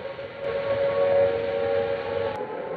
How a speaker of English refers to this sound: This is Trafalgar Square. The noise that you hear at the moment is the sound of the air raid sirens. I'm standing here just on the steps of St. Martin's in the Fields.